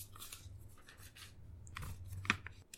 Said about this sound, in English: And I struggle to turn the page. What is actual paper?